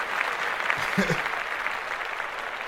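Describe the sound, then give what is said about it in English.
A crowd applauds a young man's mother, cheered on to clap for her, in a dense, steady wash of clapping that holds for the whole stretch, with a brief voice calling out partway through. “You clap that up. Yeah. Clap it up.”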